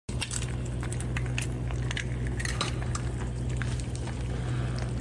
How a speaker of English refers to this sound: Cue the sizzling pan.